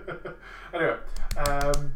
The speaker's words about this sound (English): That's not a clap, that's slapping yourself. Yeah, I know, but I was holding a pen in the other hand and I couldn't be bothered to put it down.